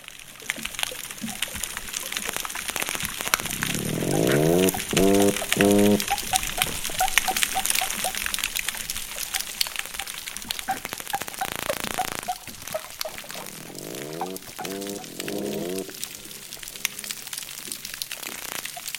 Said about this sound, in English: And there are some dolphins here also.